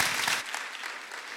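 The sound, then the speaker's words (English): A burst of audience applause for panelists: dense, crackling clapping from many hands, bright and steady, fading slightly after the first half-second with no voices over it. “Wild applause for these panelists.”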